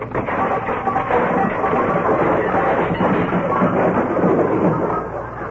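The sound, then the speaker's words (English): A long, loud avalanche of junk crashing and clattering out of Fibber McGee's overstuffed closet, made by radio sound effects man Frankie Pittman, a dense, unbroken jumble of rattles and bangs lasting several seconds with no voices. “Got to straighten out that closet one of these days.”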